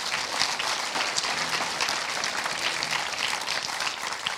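An audience claps steadily in a sustained round of applause, dense and even throughout, with many overlapping hand claps forming a bright, crackling wash and no voices standing out.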